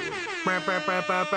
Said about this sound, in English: We're going to do air horns again.